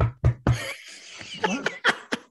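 Three quick, evenly spaced knocks on a door as someone else arrives, followed by people laughing and chattering.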